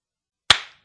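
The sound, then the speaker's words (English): A single sharp hand clap, made to sync a recording, loud and crisp, with a brief ringing tail that fades quickly; it is alone, surrounded by silence, with no talking. “Can I do the clap?”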